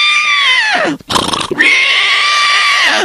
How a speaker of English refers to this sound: Hey, what's the horse doing? Stop jumping up and down. The horse is jumping up and down.